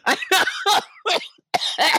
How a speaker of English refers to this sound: Oh, God, now I'm coughing.